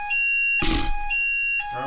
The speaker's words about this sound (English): You mentioned disco. Look what happens when you mention disco. Is that your fire alarm? No, was it your fire alarm?